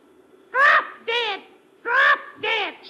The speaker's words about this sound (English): No, no, it is a parrot, Commissioner. I'll prove it to you. Look, I taught him something to say to you.